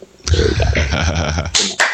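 A burst of applause as a sound effect: dense, loud clapping with a crowd-like roar that holds steady for under two seconds, with a couple of sharper swells near the end.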